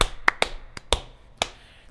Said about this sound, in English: Jason Garrett is gone, people. We got to do the slow clap because that's what he does. Remember?